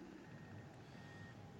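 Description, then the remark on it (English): Faint reversing beeps from a John Deere front loader at the concrete barriers of a race track, moving into position to shunt a concrete block back, a thin high tone repeating over a steady low rumble of engine and background noise, with no one talking. “The John Deere front loader is already at the concrete barriers.”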